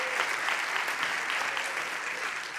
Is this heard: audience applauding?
yes